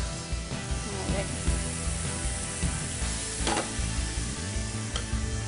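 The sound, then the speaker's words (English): Onions fry in bacon fat with a steady, dense crackling sizzle, broken now and then by sharp scraping clicks of a utensil stirring the pan. “gonna take onions and add it in, and we're gonna cook these until they're softened and a little smoky from the bacon, right?”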